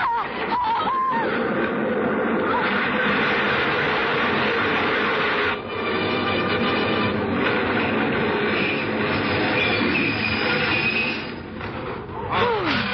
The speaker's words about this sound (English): Oh, the train was in and out.